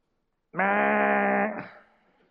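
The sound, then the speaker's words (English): A voice imitates a resounding gong, as in 1 Corinthians 13, with one loud, sustained, buzzy tone held for about a second, ending in a brief noisy burst that fades into a soft trailing decay. “That's what a gong sounds like in my mind, or a cymbal.”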